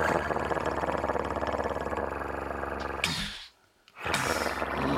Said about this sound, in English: And then we get the guttural growl and padding as our wolf starts to emerge, and it gets closer and closer.